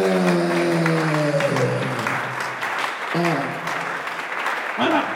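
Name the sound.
audience clapping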